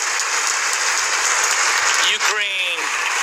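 Steady, dense applause from an audience fills the whole stretch, loud and continuous, with a brief rising whistle or cheer cutting through near the end.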